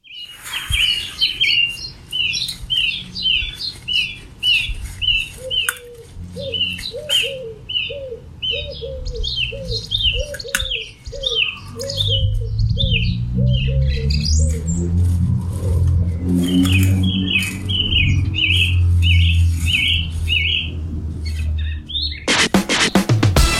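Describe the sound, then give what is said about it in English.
Birds chirp and sing in rapid repeated phrases throughout, joined midway by a lower rhythmic cooing like a pigeon or dove, with a low rumble of passing traffic in the background. “So, here's the birds.”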